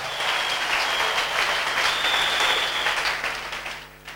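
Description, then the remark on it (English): A crowd applauds steadily, dense clapping at fairly strong volume before tapering off near the end, with no one speaking over it. “Give Jesus a clap of him.”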